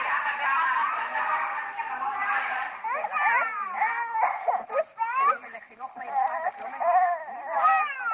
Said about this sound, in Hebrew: בהקלטה נוספת הבכי נמשך, קורא הלב, אבל את הגננת זה ממש לא מעניין.